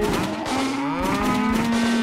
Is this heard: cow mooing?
yes